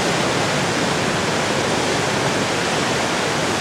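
Steady, loud rushing water of a creek in Glacier park fills the whole stretch, a dense unbroken roar like a fast creek, with no pauses and no voices.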